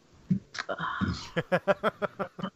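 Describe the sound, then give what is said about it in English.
A drawn-out, throaty belch lasting under a second, followed by a quick run of about eight short, rhythmic voiced bursts, like chuckling. “All right, so there's an additional belch.”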